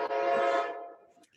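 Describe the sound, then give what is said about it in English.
A loud, sustained train horn blares with a rich, chord-like harmonic tone, then gradually fades away over about a second. “Oh, is that the train?”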